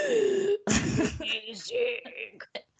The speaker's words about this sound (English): don't make me start coughing from laughing. I'm so sorry.